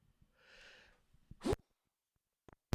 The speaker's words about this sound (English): I have to sneeze.